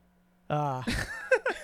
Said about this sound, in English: Okay. I'm so happy the buzzer works.